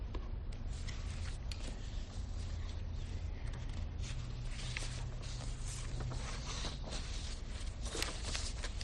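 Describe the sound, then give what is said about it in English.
Sheets of paper being shuffled and straightened, a steady run of crisp rustles and soft taps over a low background hum, with no one speaking. “Sorry, I gotta get my paper straight here.”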